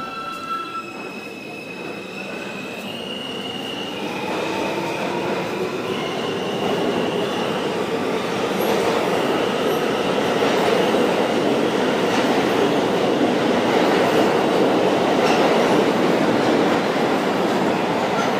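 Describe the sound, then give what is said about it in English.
A train rolls along the rails, its heavy rumble building and then holding steady, with high metallic whines and squealing tones ringing over the roar throughout. “You exit the train and head for the street.”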